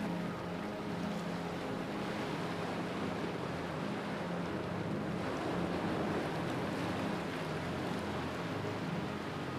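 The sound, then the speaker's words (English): Steady, continuous ocean surf washes along the shore at a moderate level, a broad wash of water noise without distinct individual wave breaks, with no voices present. “Remember that you can return to this peaceful state of mind at any time by imagining yourself back on the shore of the ocean.”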